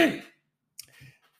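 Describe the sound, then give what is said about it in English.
A raspy throat clear bursts out and fades, then a couple of short, softer guttural follow-ups. No talking. “Gang, first I want to clear my throat.”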